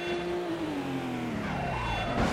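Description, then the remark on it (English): A video game car engine drones and shifts pitch as the car fishtails, its tone sliding down as the tires screech and skid, with a louder burst of revving at the end. No one speaks. “Oh, fishtailing all over the place.”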